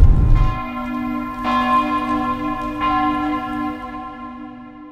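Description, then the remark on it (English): A church bell tolls three times, each strike resonant and ringing out with long, layered overtones that hum on between blows. It sounds loud, with no voices present. “You're in no fit state to go up in that belfry.”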